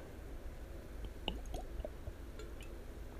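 Quiet sips and gulps of Ouachita Mountain water from a bottle, a few wet swallowing sounds clustered together over a soft background hiss, with no talking.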